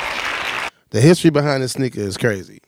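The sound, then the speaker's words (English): A short burst of dense, rapid hand clapping lasts under a second, then stops abruptly, and a person starts talking. “Hand claps.”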